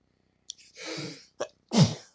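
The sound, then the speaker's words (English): A loud sneeze: a quick gasping build-up, a brief catch, then a forceful explosive burst at the end, with no talking. “Oh, dude, I get into sneezing fits.”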